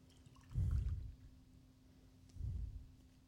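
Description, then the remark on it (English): Someone chugs a sour IPA beer in two muffled, low gulping bursts, with a short pause between them and a faint steady hum underneath. No one speaks. “Swish it around so we could hear in your microphone. Not much at all, so. Chug it.”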